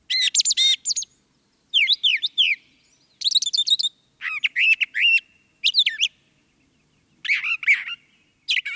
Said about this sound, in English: And finally, the brown thrasher.